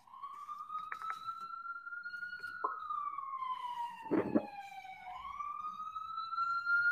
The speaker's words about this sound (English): And you got the sirens. All of this stuff.